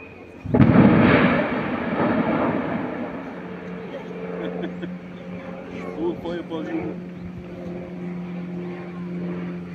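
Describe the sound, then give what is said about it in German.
A wind turbine tower in Freiburg, Germany, is demolished and topples over with a sudden, heavy crash and a deep, roaring rumble that slowly fades into a long, low rumble, while people murmur in the background. “Windmill demolition Freiburg/Germany”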